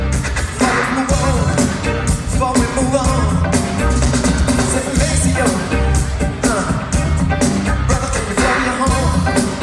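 A horn solo rides over a loud, dense funk groove, with bright wavering melodic lines above a steady, punchy rhythm section of bass and drums that never lets up.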